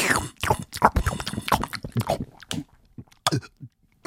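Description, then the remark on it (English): Someone drinks water, with a busy run of wet mouth sounds and gulps that thin out into a few separate swallows and smacks toward the end. “Take a drink.”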